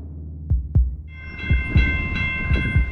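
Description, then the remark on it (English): A train rolls past close by, running behind a building, its wheels thudding over the rail joints in steady paired clacks while a loud, sustained tonal whine or horn rises over the rumble partway through. “But every single time you hear that train, you really get a sense of just how present those trains are, how close they are.”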